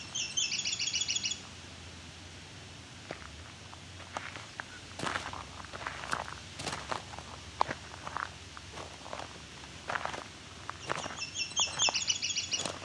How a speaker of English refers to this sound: Myrtle warbler's a little softer and cleaner. And this bird seems to be kind of in between. It may just be because I can't hear the extra complications in the warble.